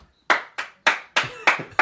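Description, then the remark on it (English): Six sharp hand claps from a person clapping for himself ring out in a steady, slightly uneven rhythm, each a bright, crisp smack with a quick decay, with no voices over them. “He's clapping for himself.”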